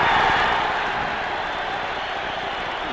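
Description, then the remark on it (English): A large boxing arena crowd roars and cheers for heavyweight champion Joe Frazier in a dense, continuous wash of noise, loud and sustained, easing off only slightly over a few seconds. “Sounds like Joe had the crowd on his side there.”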